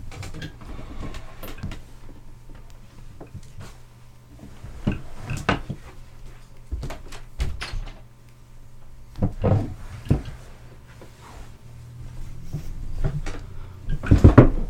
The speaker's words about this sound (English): My door popped open randomly. That's fine. Which is just lovely.